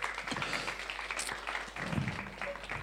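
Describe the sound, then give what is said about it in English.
Steady, dense clapping from an audience for three people as they go and sit down fills the whole stretch, a continuous patter of many hands at moderate loudness with a few indistinct voices mixed in. “Round of applause for”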